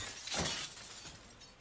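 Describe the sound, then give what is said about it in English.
An axe smashes through glass as a small stunt gag in a film scene shot at a hospital exterior in freezing cold rain: one sharp, bright shattering crash, followed by a brief spray of tinkling shards that fades out. No voices are heard. “Little axe gag.”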